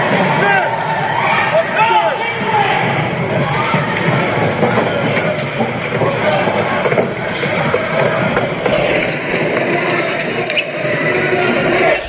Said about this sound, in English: It's just general video of people stampeding.